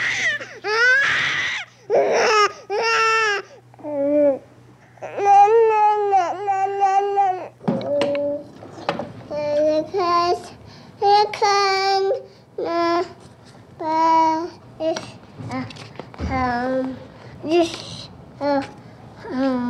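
A sped-up recording by radio producer Tony Schwartz of his baby niece from birth to age 12, compressed into 2 minutes 12 seconds: crying and babbling, with high, chirpy wails and burbling syllables coming in rapid, choppy bursts separated by short pauses, over a faint steady low hum.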